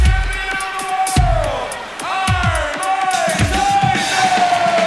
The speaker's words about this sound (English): Oh, he got booed. He's the heel.